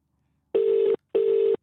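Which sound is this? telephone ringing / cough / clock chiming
telephone ringing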